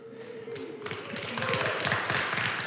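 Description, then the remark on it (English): A thin, scattered round of applause from only a few hands at a Bible study session marking week 17 and the last night of studying the book of Galatians. Irregular claps start sparse and fill in slightly, with a faint steady tone underneath at the start. “That's kind of a meager applause there.”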